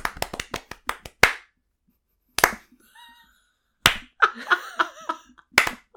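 A short round of applause: a quick burst of sharp handclaps, then a few loud, scattered single claps, with faint laughter and vocal sounds in between.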